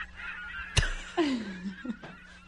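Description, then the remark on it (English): A person mimics seagull calls: a sharp squawk, then a drawn-out, downward-sliding cry followed by a couple of shorter yelps, with no talking. “Seagulls and bagels.”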